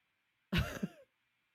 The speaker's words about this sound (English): Like, it's like, so far it's like, no, all the coughing I'm getting is just my normal smoker's cough. Which is a thing that, like, I've become much more self-conscious about now that everybody, like, panics.